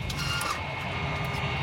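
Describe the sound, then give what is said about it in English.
A rough aircraft engine drones steadily, a dense rumbling roar with a gritty, rattling edge that suggests a failing motor. The sound stays at a constant level throughout, with no voices. “I have engine failure. Repeat, engine failure.”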